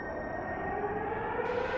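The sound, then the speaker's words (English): A sustained emergency siren wails steadily from some distance, its tone holding with only slight rises and falls over a soft background rumble, with no voices. “Air horns. Emergency sirens.”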